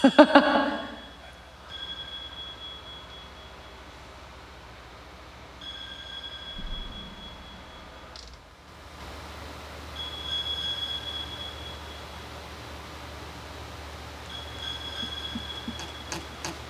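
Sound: phone alarm ringing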